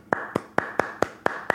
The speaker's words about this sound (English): The 7th best defense in the league the last 10 games. Round of applause. If you're driving, keep your hands on the wheel. I'm going to clap for you.